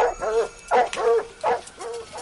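Cadaver dogs in a backyard bark in an insistent series of four or five loud, sharp barks with short pauses between them, indicating human remains there, with no talking.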